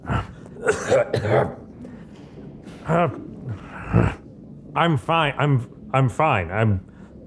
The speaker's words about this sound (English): As you were making your way back, you get to the office, the sort of private workroom of Father Crayon, and you just hear this racking cough coming from inside of the room.